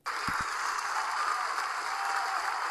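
An applause sound effect starts abruptly and holds steady, a dense wash of many hands clapping at once, loud, with no voices on top.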